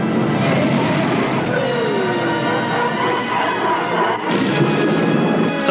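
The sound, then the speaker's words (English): A loud, sustained roar of a spinning TIE fighter crashing in the Star Wars asteroid field, with a whining tone sweeping downward partway through amid dense rumbling noise, briefly dipping before surging again; no one speaks. “Sometimes in Star Wars, you just got to watch a ship crash.”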